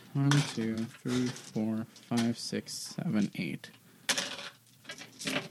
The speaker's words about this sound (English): Can I borrow 8d6? Here. Six. Here's a... I got to put some dice away here.